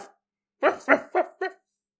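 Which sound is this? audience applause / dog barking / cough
dog barking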